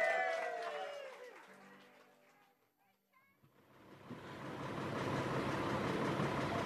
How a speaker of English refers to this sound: Tuesday. The second full day in Westport. The bus to Knock is waiting outside the hotel.